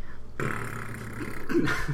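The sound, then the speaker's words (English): A voice imitates a fart with a long, buzzing, rasping blow lasting over a second. It is fairly loud, with no talking around it. “And it just pissed me off because the point was, like, if he's going to fart, he might as well wait until the mic is on.”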